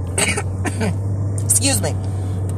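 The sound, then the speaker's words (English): A person coughs and clears their throat a few times in close succession, from sinus trouble and allergies, over a steady low hum. “Excuse me, sinus and allergies.”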